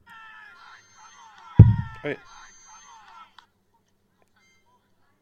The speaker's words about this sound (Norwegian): Så det et munnspill. som jeg synes veldig, veldig gøy. Hør så svagt, da. Men det jo veldig fint.